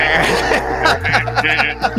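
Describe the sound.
A voice imitates a Geiger counter with a run of short, nasal, bleating bursts that sound oddly sheep-like, fairly loud, with no other talk.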